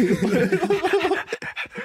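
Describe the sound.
A person imitates a dog panting, starting with a voiced, whiny breath and breaking into a quick run of rhythmic, breathy huffs.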